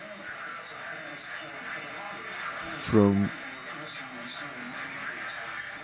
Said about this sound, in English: And as usual, we are picking up some interference